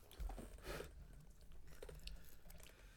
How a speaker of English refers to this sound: You're munching. Is that cheese good? It's chili cheese dip.